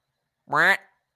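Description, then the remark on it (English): A person gives a single nasal, drawn-out quack in imitation of a duck, loud, lasting under half a second with silence on either side. “Until you're done quacking.”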